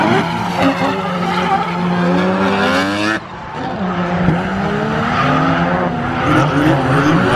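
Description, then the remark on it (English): A loud, sustained race car engine roars continuously with shifting pitch, accompanied by squealing tires and a fluttering, turbo-like whoosh, with no one speaking. “Sounds like a race car, because it just keeps going. A little fluttering and stuff is a race game, like turbo sound and everything.”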